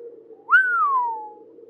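A person gives one long whistle of awe while staring into a heavy snowstorm, jumping up quickly, then gliding slowly downward and fading, like an impressed 'wow'. A steady low drone hums underneath throughout.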